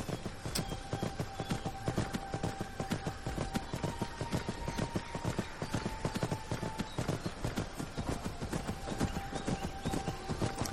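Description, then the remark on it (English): Steady clip-clopping of horse hooves pulling a carriage in the video game Skyrim, by the town of Falkreath, a brisk continuous rhythm of sharp knocks throughout, with faint wheel creaks and a thin high tone running underneath. No one speaks. “And there's the carriage.”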